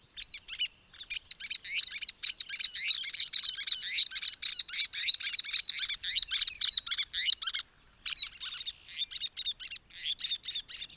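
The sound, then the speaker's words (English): High, rapid chattering calls of a least tern, a threatened species, repeated almost continuously in quick bursts, clear with no other sounds around them. “lease terns are a threatened species and ones that that Maine Audubon works to protect”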